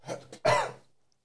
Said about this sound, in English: As the saying goes, let me clear my throat.